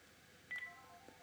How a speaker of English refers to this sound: Oh, it's the phone. Oh, what do I do with it?